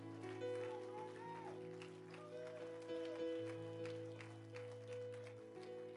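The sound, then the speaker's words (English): An audience claps their hands unto God in thanks, a steady dense patter of many hands over sustained organ or keyboard chords, with voices murmuring and calling out in the background. “Can you clap your hands unto God and thank him for what you feel in this place?”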